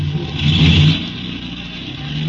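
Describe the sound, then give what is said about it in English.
A car engine revs up loudly as a woman drives the wrong car away, the low rumble swelling in the first second before easing into a steady drone as the vehicle pulls away, with no voices. “Hey, that dame, some driver in a snappy... Hey! Hey, wait a minute! Wait a minute, lady! You got the wrong car!”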